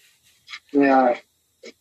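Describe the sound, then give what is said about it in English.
A puppy lets out a high-pitched squeaky whine lasting about half a second, with a couple of brief faint squeaks before and after. No one talks. “They're squeaky little puppies.”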